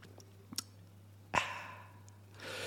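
A couple of small mouth clicks, then a short slurping sip of water and a swallow, followed by a soft exhaled breath. No talking, and the sounds are quiet over a steady low hum.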